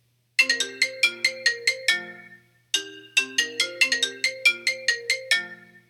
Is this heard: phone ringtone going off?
yes